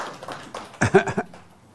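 A short, scattered burst of audience applause, a handful of claps bunched together for under half a second before quickly fading out, moderately loud.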